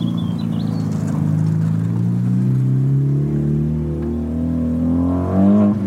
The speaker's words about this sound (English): Where's the fat exhaust?